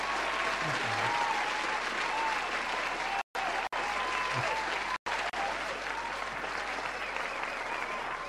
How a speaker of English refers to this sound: Can he get a round of applause?